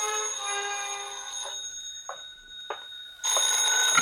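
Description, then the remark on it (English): A telephone bell rings in an apartment with a sustained metallic tone, a few short clattering jolts, then a loud burst of ringing near the end. Fairly loud, with no voices. “Item two, another dollar for a taxi back to my apartment where I slicked the stubble off my face, showered, dressed, and was about to head for New York when the phone rang.”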